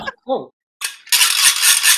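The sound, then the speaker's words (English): A brief voice, then a burst of dry, crackly rustling that swells into a loud, steady shower of fluttering paper, like a handful of paper confetti thrown in the air and scattering. “I'm just throwing a man of paper in the air.”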